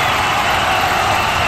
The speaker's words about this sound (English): Oh, the crowd keeps going.